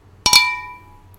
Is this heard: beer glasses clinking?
yes